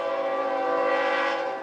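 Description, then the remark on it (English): A loud, sustained train horn from a passing train sounds a steady, chord-like blast for nearly two seconds, unbroken, easing off slightly at the very end. No one speaks. “Now today, we're going to be talking about trains.”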